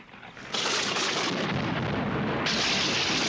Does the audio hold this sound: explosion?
yes